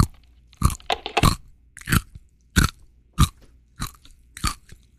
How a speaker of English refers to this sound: I'll just eat nerds. Yeah, just, you know, subterfuge with the nerds. How loud can those crackles pop?